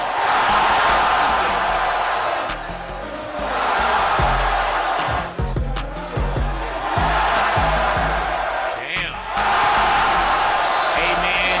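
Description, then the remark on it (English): A loud basketball crowd at a Drew League game, reacting to LeBron James showing up to play, roars and whoops continuously, with surges of cheering and scattered shouts, while ball bounces and sneaker squeaks punctuate a lull in the middle. “Listen to the reaction of the crowd.”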